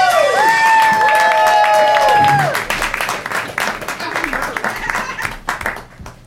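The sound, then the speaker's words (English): An audience breaks into dense, steady applause for a comic coming to the stage, with high whoops and cheers ringing over the first couple of seconds, then the clapping thins and tapers off toward the end. “Give a round of applause for the very hilarious”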